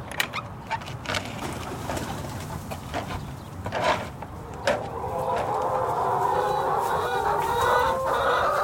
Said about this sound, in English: We walk into one of the coops, and Kenan picks up this very pretty speckled hen.